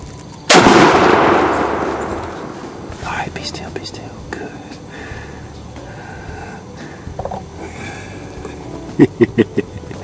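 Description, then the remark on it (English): A single loud rifle shot, fired while hunting, cracks out and rings off into a long fading tail, followed by hushed whispering voices and a quick series of faint taps near the end. “He's up now. He's high. Shoot it.”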